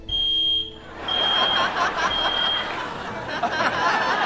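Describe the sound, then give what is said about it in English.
A high, piercing fire alarm tone, set off by thick smoke from a rented smoke machine, sounds in repeated long bursts, loud and steady, over noisy laughter and chatter underneath. “This was totally part of the podcast, the fire alarm.”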